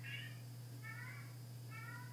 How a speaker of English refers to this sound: My cat's yelling again.